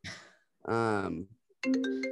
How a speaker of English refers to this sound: I'm getting a FaceTime phone call. I'd like to apologize for that.